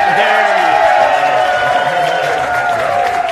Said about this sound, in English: I got to train this audience because they clap right before we come on the air.